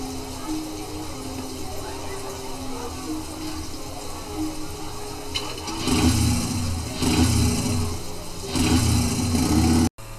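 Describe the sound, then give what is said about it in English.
A motorcycle engine idles with a steady low drone, then revs up in three or four loud surging bursts near the end, prominent, before cutting off abruptly. “Get on your motorcycle and go.”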